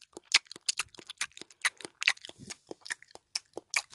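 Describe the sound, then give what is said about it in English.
A voice imitates a movie character's loud, wet gum chewing: a rapid, uneven run of smacking and crunching mouth sounds lasting several seconds, with no talking. “He chews gum the entire movie. And you can barely hear him talking over some of his lines because he goes.”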